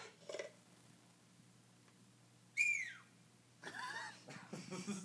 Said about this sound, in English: That's her whistling.